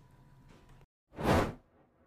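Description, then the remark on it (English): A single quick whoosh transition sound effect sweeps past, a loud airy burst of noise that swells and fades in about half a second, following a brief moment of silence. “Whoosh. All right, there we go.”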